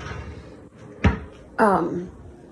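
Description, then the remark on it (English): A cupboard door bangs shut with one sharp thud as extra sugars are put away, set against a person talking before and after it. “And then gotta throw these extra sugars in the cover. I forgot to put those away.”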